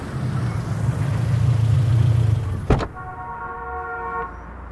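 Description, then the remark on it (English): A taxi's engine rumbles as it pulls up and settles into a low idle, followed by a sharp thunk and a brief steady electronic tone over the quiet running motor. No one speaks. “Okay, I need a lift. Hey! Taxi!”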